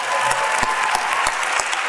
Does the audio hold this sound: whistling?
no